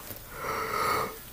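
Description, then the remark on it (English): A single drawn-out yawn, breathy and airy with a soft voiced tone that swells in the middle and fades out. No talking. “That's a beautiful yawn as well.”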